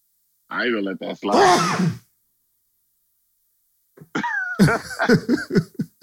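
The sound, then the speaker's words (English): A single loud sneeze, a rising voiced intake snapping into a sharp, noisy burst, followed by a short silence and then someone talking. “I sneezed.”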